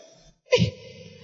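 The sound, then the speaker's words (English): A single sharp sneeze bursts out after a brief silence, loud, with a quick airy onset that fades into a low murmuring tail. “God bless you.”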